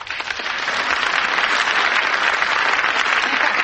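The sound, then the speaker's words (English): A sustained round of applause from a crowd greets a character coming in on stage in a play, dense steady clapping that swells quickly at the start and stays loud and even throughout, with no voices standing out. “Reggie, I thought it must be you by the round of applause you always get when you come in.”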